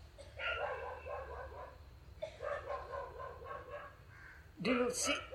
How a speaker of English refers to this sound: I've heard you say to me, only when you are silent you can hear the dog.